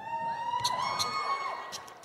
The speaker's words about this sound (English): Do you just cheer at anything? Or do you actually... Are you all addicted to nasal spray as well?